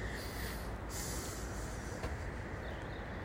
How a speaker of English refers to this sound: Windy today. Sorry if there's a lot of noise. Polytunnel's very noisy.